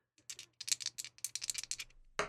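A player's dice rattle and clatter in a quick, irregular burst of sharp clicks for about two seconds, ending in a final louder knock, for a roll that comes up 10. No one speaks.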